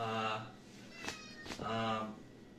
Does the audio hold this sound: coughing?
no